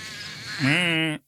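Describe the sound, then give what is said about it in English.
A male Couch's spadefoot toad gives one loud, nasal, bleating mating call lasting about half a second. It rises slightly and then holds steady over a faint buzzing background chorus of calling males. “You are hearing Couch's Spadefoot Toads, and they are advertising for mating. Those are males.”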